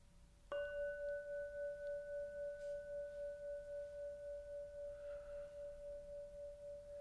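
A single strike on a hanging meditation bell, used for morning meditation and Thursday evening practices, rings out clearly, then a pure sustained tone with a faint higher overtone hums on and slowly fades with a gentle wavering pulse, no voices present.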